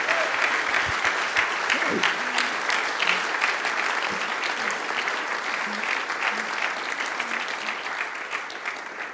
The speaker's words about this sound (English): And the rest of us, let's just raise a shout, a clap for these people who've put their hand out this morning, welcoming you into the kingdom of God.